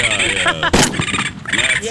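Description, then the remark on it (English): A single loud, sharp gunshot sound effect cracks out, a brief burst with a short tail, standing for a warning shot fired in the air to get rid of rabbits, surrounded by voices making wordless vocal sounds before and after. “I'm saying just a shot in the air that you get rid of the bunnies and a warning shot.”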